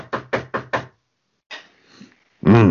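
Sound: knocking on a door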